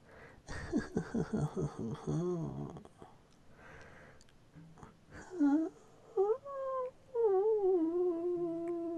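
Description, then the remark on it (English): A voice imitates a dial-up modem with a run of wavering, warbling tones, gliding pitch sweeps and bursts of breathy hiss. The sounds come in short irregular spurts, then a longer rising and falling whine. “That's the dial-up modem.”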